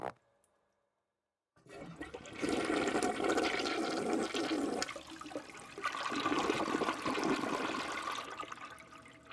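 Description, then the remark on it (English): After a moment of silence, a toilet flushes with a loud rush of water that surges, eases slightly, then swells again and keeps roaring to the end. “I'm just going to quickly go to the toilet.”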